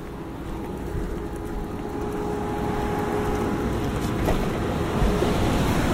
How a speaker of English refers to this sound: All right, so we're inside the car and you're probably hearing a very loud noise. That's actually the air conditioning working. We currently have it going at 60 degrees for both of us.